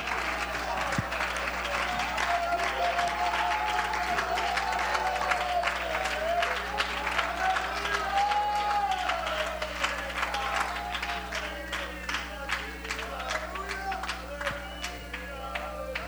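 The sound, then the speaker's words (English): A church audience claps and cheers to the Lord steadily for the whole stretch, dense overlapping handclaps mixed with whoops and raised voices, a continuous loud wash of applause with no break. “Come on, somebody, clap it to the Lord.”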